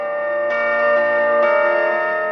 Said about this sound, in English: The bells would have chimed throughout the day periodically, 8 a.m., 10 a.m., noon, 2 p.m., and then 6 p.m., and on Sundays they would have chimed only at noon. The carillon was actually installed with the building in 1963.